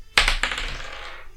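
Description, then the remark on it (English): Dice rolled for a deception check in a tabletop role-playing game clatter across a hard surface: a sharp initial impact followed by a quick series of bright rattling clicks that tumble and fade over about a second, with no voices. The roll comes to 12. “So neither does the dice. That's going to be a 12.”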